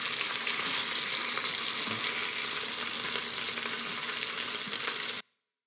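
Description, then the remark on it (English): Loud, steady sizzling of steak frying in a pan, a dense crackling hiss with small pops that runs continuously for about five seconds, then cuts off abruptly. “That sizzle was really getting super loud.”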